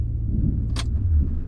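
A car idles and rolls slowly up a potholed graveled lane to the old Luckabee house during a storm, its low engine rumble steady throughout, with one brief crunching burst of stones under the tires midway.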